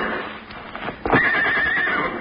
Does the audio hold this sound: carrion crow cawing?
no